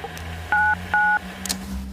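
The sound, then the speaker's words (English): Two short electronic beeps from an answering machine, evenly spaced a moment apart, each a steady dual-pitched tone, loud, over a faint background hum. “Just wait for the two beeps before you speak, if you dare.”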